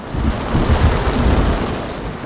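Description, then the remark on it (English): Storm waves churn and crash over a harbor breakwater in a steady, loud roar, with low rumbling surges swelling and easing under a constant rush of wind noise, during a storm with howling wind and rain. No voices are heard. “Through my windows, I could see the boats straining at their moorings and waves crashing over the breakwater.”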